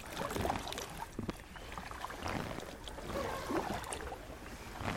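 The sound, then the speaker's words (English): Gentle, steady splashing and dripping as a kayak glides through still, almost mirror-like swamp water, with soft paddle strokes and small ripples, continuous and unhurried without any talking. “You can hear the water is almost mirror-like.”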